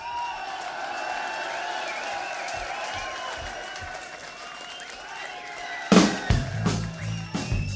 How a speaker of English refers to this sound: Stop the music. Give a round of applause to the fucking audience for a change.